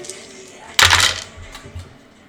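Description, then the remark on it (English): Several six-sided dice tumble and clatter across a hard tabletop in a loud burst, then settle with a few lighter rattles and taps over about a second. “You can just do a big roll. Well, now you're going to start getting dice muddled up.”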